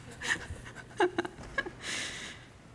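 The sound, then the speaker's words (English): A dog named Grace pants softly in a few quick, breathy puffs, with a couple of brief squeaky sounds in the middle and a longer hissy exhale at the end; no one speaks. “This is my dog called Grace.”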